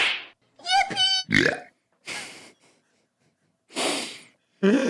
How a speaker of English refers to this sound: Which if you scrunch it down enough, it just really sounds like you get slapped and then you go, ah!